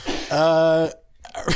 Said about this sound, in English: Sorry, the sneeze was unrelated. Got some Earth up my nose.